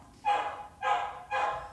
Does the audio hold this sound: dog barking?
yes